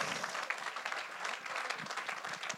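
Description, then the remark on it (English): A church audience claps in praise to Jesus, a dense, steady wash of many hands applauding together, loud and sustained throughout with no voices standing out. “Give Jesus a hand clap of praise.”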